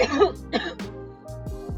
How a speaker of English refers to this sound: Look at that. I'm still fucking coughing. Look at that coughing.